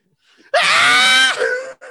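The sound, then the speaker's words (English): A loud, sustained high-pitched scream lasting under a second, likely a single voice imitating people screaming, which breaks off and trails into a brief wavering moan. “Everybody started screaming.”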